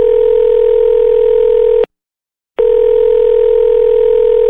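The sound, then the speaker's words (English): A loud, steady telephone dial tone hums continuously, cutting out once for a brief silent gap of under a second before resuming unchanged. No voices are present. “Let's head to the phone lines.”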